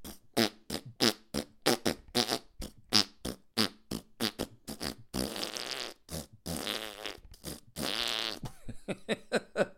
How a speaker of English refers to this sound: Fart noises just make me laugh. I hope they make you laugh too.